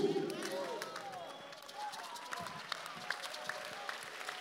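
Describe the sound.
An audience claps by hand, a steady patter of overlapping sharp claps with a few louder strikes standing out, while voices murmur and call out beneath.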